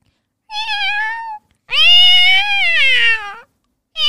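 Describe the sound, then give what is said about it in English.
A person's voice imitates a cat meowing: a short meow, then a longer, louder wavering one, with a third just starting as it ends. Clear, with no talking. “I can do a cat as well.”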